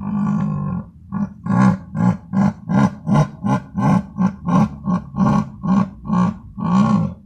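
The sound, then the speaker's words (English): A jaguar roars: a long, low opening call followed by about a dozen rapid, evenly spaced rasping grunts, loud and coarse like a saw, with no voices. “The jaguar roars instead of screaming like the cougar, and its smaller stature and extreme shyness make it unlikely to venture close to humans.”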